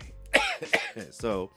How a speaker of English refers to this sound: Sorry y'all, I'm coughing. I have really bad allergies, so it's like post nasal drips.